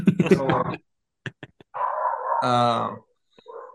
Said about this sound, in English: I think your dogs hate the Rockies, by the way. Yeah, they don't like them.